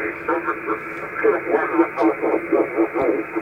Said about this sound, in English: But with HF, and I'll turn my HF rig on, you're going to hear some static in the background. And this is on 40 meters.